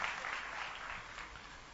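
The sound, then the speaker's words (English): An audience claps together in a steady, dense wash of applause that holds at an even level throughout, with no distinct individual claps and no voices standing out. “Oh, clap for them.”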